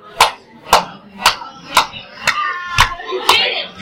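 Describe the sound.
People clap their hands together in a steady, even beat, seven sharp claps about half a second apart, with a faint voice murmuring underneath during the second half.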